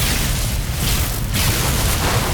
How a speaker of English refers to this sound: A bolt of lightning fell from the sky and hit the lake.